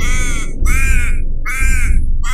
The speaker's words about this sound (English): The man saw the raven fallen helplessly on the ground. It was alive and crying for help.